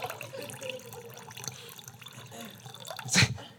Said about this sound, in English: Yeah, that's about good. Okay. Take this glass. I poured water in this glass.